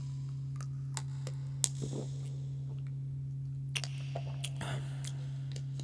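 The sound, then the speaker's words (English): Someone quietly sips water, with a few soft wet mouth clicks and gulps scattered over a steady low electrical hum; no one speaks. “Let me get a quick drink of water.”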